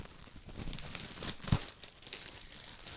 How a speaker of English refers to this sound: So I actually got it, and while you're pulling that up, I will open it up. I will open it up because I just got it in the mail. I don't even know fully what it looks like, so I'm going to open it up on the show.